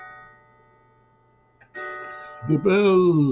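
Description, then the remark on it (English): Electronic bells ring out in sustained, steady tones that slowly fade, then a louder burst of chiming tones starts, soon joined by a strong sliding, voice-like tone. “The bells. Okay. Not even bells anymore, really. Everything's electronic.”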